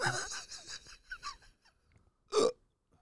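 A run of quick, breathy hiccups in close succession, then a brief pause before one louder, sharper hiccup, all close up with no talking.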